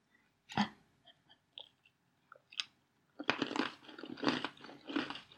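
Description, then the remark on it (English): A person with eyes closed bites a crunchy cookie with a few sharp cracks, then chews it in a dense run of loud, crackly crunches. There's no talking. “Somehow she knew that I was approaching her with the cookie because she flinched.”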